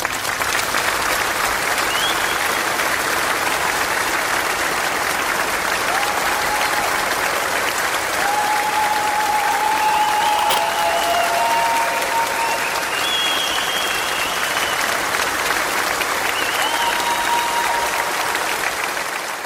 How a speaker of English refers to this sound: Let's give a round of applause for our guests.